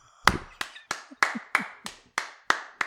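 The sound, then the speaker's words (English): About eight sharp hand claps in a steady, even rhythm, fairly loud, with no voices in between. “Please clap.”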